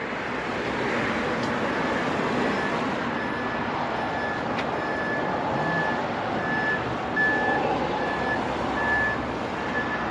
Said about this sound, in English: It sounds like a truck is backing up. I'm not sure if the microphone picked it up.